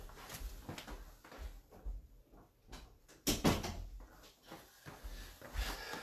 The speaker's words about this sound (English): I need to close my door real quick.